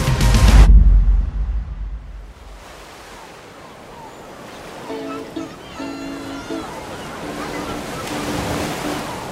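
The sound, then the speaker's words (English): Ocean waves rush against the shore below cliffs at Malibu, with a loud surge at the start, then settle into a steady, softer roar of surf, with faint tonal sounds drifting in midway. “I can see the ocean and the cliffs in my rearview mirror.”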